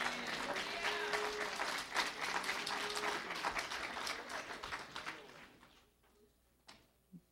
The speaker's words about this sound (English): Okay, while you're happy to help me out with your amens and clapping your hands, just remember, I'm not the only one with the trial.